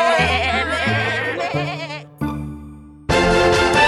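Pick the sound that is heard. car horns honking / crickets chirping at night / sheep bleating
sheep bleating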